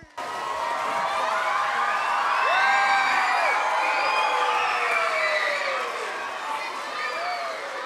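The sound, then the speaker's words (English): A large audience at a classical concert erupts in sustained applause for Dr. Noreen Green and the Los Angeles Jewish Symphony, with loud cheering and several shrill whistles rising and falling over the clapping at a steady, enthusiastic level. “So this is a classical concert, and usually we just use our hands for clapping, not whistling, just our hands for clapping”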